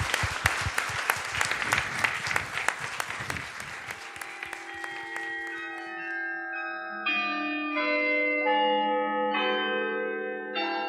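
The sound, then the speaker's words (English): A crowd applauds a panel at the close of a discussion with dense, steady clapping that fades over about five seconds, giving way to ringing bell tones playing a slow melody in overlapping sustained chimes. “May we please have a huge round of applause for our panel and our wonderful comments.”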